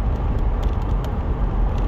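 Steady road noise from inside a moving car: a constant low rumble with a broad hiss on top, holding even and fairly loud throughout, with no voices.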